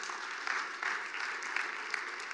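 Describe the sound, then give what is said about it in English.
An audience claps to the Lord in sustained, dense applause, many hands blending into a steady wash of sound with no voices heard over it. “Well, clap to the Lord.”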